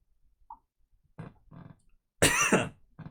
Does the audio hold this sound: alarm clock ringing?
no